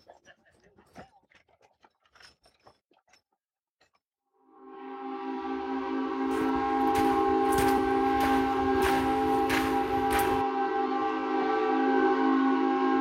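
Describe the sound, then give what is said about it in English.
The steamboat Magnolia on the Mississippi River blasts its whistle in loud and holds a rich, steady, multi-toned chord for several seconds, with rhythmic puffing bursts pulsing through it, after a few quiet scattered clicks. “Go look at the steamboat while I try to figure this out.”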